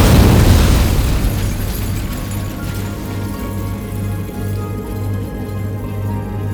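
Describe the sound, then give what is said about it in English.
A loud, deep explosion at a fairground, heard from the other side of the fairgrounds, booms at the start, then its low rumble lingers and slowly fades under a steady hum, with no voices present. “From the other side of the fairgrounds, you guys hear an explosion.”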